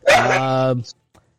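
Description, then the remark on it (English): A single loud, drawn-out dog bark, starting with a sharp rasp and holding a strained, tonal whine before cutting off, with a faint click after and no talking. “sorry, my dogs are giving off”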